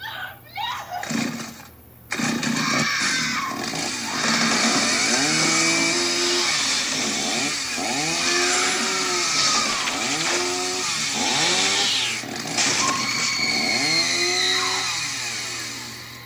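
A chainsaw roars, its engine revving again and again in rising-and-falling surges, nearly a dozen loud bursts in a steady rhythm after a short sputtering start.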